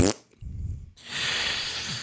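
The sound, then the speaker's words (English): A voice imitates a fart with a low, buzzing lip-blown rasp lasting about half a second, followed by a long breathy hiss. Fairly loud, with no talking. “Make the sound of a fart,”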